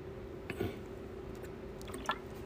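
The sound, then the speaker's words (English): Someone drinking water: two soft, brief wet gulps about a second and a half apart, faint, with a low steady hum underneath and quiet in between. “So let me grab a drink of water.”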